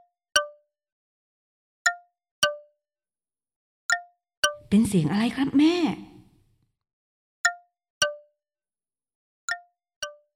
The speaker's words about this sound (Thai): เป็นเสียงของแท่งน้ำแข็งที่กำลังละลายนะจ้าที่ปากถ้ำแท่งน้ำแข็งโดนแสงอาทิตย์กำลังละลายนะกลายเป็นหยดน้ำหยดลงมา